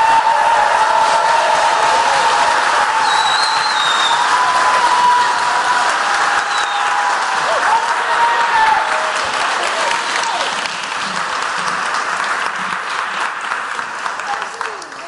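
Sustained audience applause, dense and steady clapping with some cheering mixed in, loud throughout for about fifteen seconds before tapering slightly at the end.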